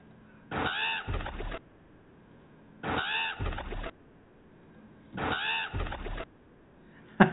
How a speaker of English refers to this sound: We've got some more crows here, I guess.